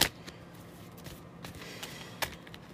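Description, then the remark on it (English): Tarot cards being shuffled up close for a reading, a series of soft papery riffles and sharp snaps at irregular intervals, with a louder crisp flick near the start and another near the end, no talking. “And I'm shuffling for the last card.”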